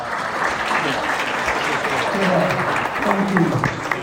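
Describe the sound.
Sustained audience applause at a debate welcoming the final speaker, a CEO from Unreal New Zealand: dense, crackling clapping from many hands at a steady, fairly loud level throughout, with faint voices or cheers mixed into the crowd noise.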